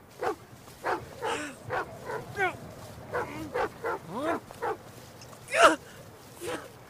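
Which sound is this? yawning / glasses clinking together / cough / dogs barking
dogs barking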